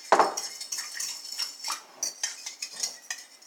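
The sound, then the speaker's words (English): A fork scrapes and clinks against a bowl while a yeast mixture is stirred, starting with a sharp knock and then settling into soft, repeated swishing strokes about every third of a second. “So make sure you mix it together real well.”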